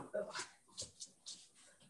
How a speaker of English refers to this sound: I just, do you hear that dog whining? I'm gonna let her in real quick. Is that cool? Yeah, go ahead. Okay. This is the dog I'm dog sitting.